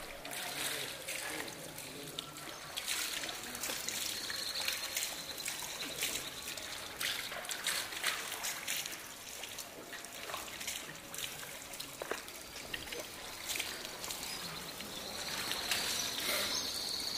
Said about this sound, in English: Men who live and work in this part of the Medina come here to pray, but before they do, they remove their shoes and wash their feet, hands, and face at the fountain in the school's courtyard.